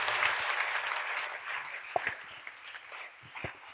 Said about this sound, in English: Oh, I thought your hand clap, it can be better.